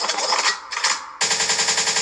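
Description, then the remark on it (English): Rapid bursts of gunshot sound effects, used as a DJ cue meaning forward, loud, crackling in quick repeated volleys with a brief gap before a final sustained barrage. No one speaks. “Liquid means rewind. The gunshot means forward.”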